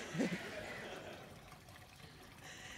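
Running water pours in a steady, soft stream, a continuous hissing wash that stays fairly quiet and even throughout, with a brief low murmur near the start.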